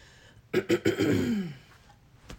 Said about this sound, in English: excuse me, I was reminded, got to clear my throat, oh my goodness.